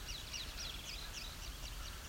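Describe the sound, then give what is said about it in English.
Crows caw faintly, their harsh calls repeating in quick, overlapping bursts over a steady outdoor background hum, as they mob a predator. “So the crows are interested in something. Making a racket.”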